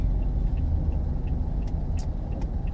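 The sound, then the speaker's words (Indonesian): Steady low engine rumble from idling cars in a slow traffic jam near Senayan City, constant, with faint high clicks and brief hisses scattered on top. No one speaks. “Oh, ini sebenarnya bikin macet tuh begini.”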